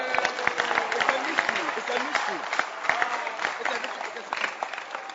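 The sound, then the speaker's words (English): An audience claps steadily for about five seconds, a dense crackle of many hands at fairly even loudness, with scattered voices calling out underneath. “Clap for her.”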